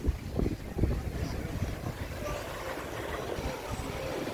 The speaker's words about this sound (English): So this is Playa Flamingo. Some pretty heavy waves coming in on the shore there.